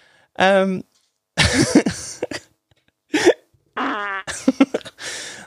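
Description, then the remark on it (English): A voice imitates the choking gurgle of people being choked in jiu-jitsu, in several short bursts: strained, buzzing vocal sounds broken by raspy, breathy gasps, loud, with brief silences between them. “Everyone was getting their choke on and, like, just hearing throughout the gym, like, the traditional chokey-chokey noise, which is...”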